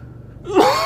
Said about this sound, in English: It's just a cough. It's a chronic cough.